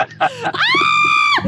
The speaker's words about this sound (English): Oh, good Lord, she's yelling.